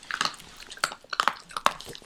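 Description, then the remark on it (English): Crisp crunching of a fried, folded fortune pod being chewed open, with several sharp irregular crunches over about two seconds and no talking. “Okay, let's chew open one of these bad boys and see what predictions fall out.”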